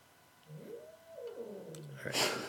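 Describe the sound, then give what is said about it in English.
A cat lets out one long, drawn-out meow that rises and wavers before trailing off, moderately loud, followed by a brief burst of rustling noise. “It's okay, because now our podcast has cats on it, and nothing gets more popular on the internet than stuff with cats on it.”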